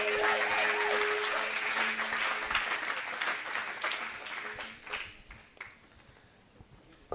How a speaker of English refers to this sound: Why don't you just give them a round of applause as they come and join us?